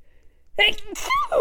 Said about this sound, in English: One second, I'm going to sneeze.